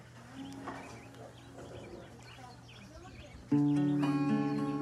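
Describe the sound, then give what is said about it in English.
Birds chirp faintly outdoors among greenery against a low ambient hum for a few seconds, then a loud, sustained harmonic tone abruptly takes over near the end. “And the sounds of the birds chirping and all the green here is only going to help us.”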